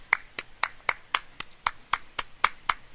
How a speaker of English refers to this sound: I was applauding vigorously.